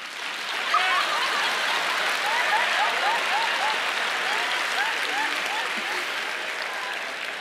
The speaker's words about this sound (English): Even a bad preacher is encouraged by amens and feedback and people getting excited and clapping. So the worse the preacher is, just come on, clap for him. Give him some more help, all right?